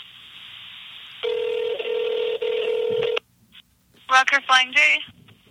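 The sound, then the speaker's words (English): A telephone call to a Flying J truck stop in Montana: the line hisses, then a steady ringing tone sounds for about two seconds before cutting off. Moments later, a voice answers on the line. “calling a Flying J truck stop in Montana.”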